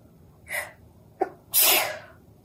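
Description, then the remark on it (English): A single loud sneeze caused by allergies: a short sharp intake of breath, then an explosive burst of air that trails off, with no talking. “Fuck allergies, guys. I've been taking Zyrtec every day and I still sneeze.”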